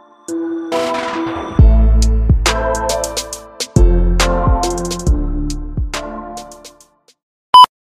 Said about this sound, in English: Oh, my phone is ringing.